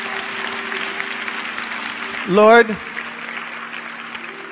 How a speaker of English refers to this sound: God is awesome. Come on, can we give him one more hand clap of praise?